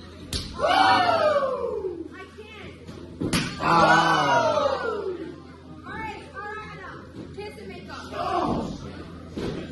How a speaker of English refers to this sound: He slapped me right in the back, turned around, looked at him, slapped him across the face.